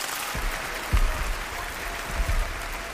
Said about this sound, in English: That is, of course, a huge success of somebody somewhere in the world. Massive applause. Most importantly, no booing, basically, which I thought would be the relevant thing.